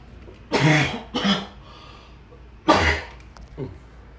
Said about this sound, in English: I hope that didn't pick up. I just coughed. So if it did, I'm very sorry. I held the microphone and everything away from me so that it wouldn't pick up.